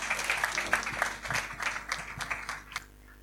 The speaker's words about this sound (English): You have to keep clapping, please.